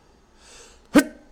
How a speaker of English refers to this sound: Oh, trying not to sneeze.